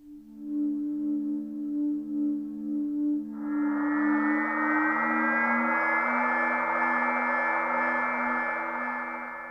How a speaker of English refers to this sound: The Acoustic Vehicle Alert System, or AVAS, AVAS, generates unique, distinctive sounds that helps the car make itself heard, increasing safety for vulnerable road users. This is very good, so let's take a listen to this feature.